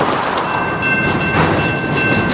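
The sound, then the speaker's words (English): A freight train rumbles steadily past on the rails through a Vancouver neighborhood, a loud continuous roar with faint high metallic squeals and some clatter throughout, no voices present. “But when the train comes along, the neighborhood grinds to a standstill.”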